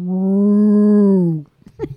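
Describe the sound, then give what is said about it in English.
A person imitates a cow's moo with one long, steady, low-pitched voiced tone lasting over a second, sliding down at the end, followed by a brief soft rustle. “That's a cow.”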